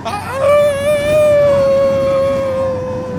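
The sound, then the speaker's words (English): A person lets out a long, loud, sustained, involuntary scream at a steady high pitch, almost like a howl, lasting about three seconds, at a huge drop on a magnetic-launch ride, with no other talking. “No, that was just a terrifying scream.”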